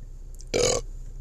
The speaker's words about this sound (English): Excuse me. And burp. I burped on cue. No, I didn't have that set up.